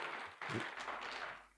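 An audience applauds, a dense, steady wash of many hands clapping at once that holds level for over a second, with a brief murmur of voice mixed in.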